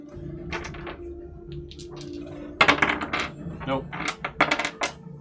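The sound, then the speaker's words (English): Two six-sided dice clatter and rattle across a hard tabletop, rolled for falling damage in a tabletop game: a burst of sharp, quick clicks that bounce and settle, over a faint low background hum. “So we need to roll 2d6 chaos dice, please.”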